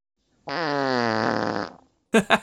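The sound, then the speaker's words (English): A voice imitates a fart with one long, buzzy raspberry lasting over a second, its pitch gradually sagging before it fades, standing in for the fart noise the game character Alucard should make when transforming into a poisonous mist; a moment later someone starts talking. “All that's really missing is the fart noise Alucard should make when you transform into this poisonous mist.”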